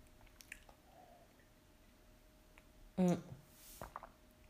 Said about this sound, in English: I think that might be another episode because, I don't know, I'm gonna have some water.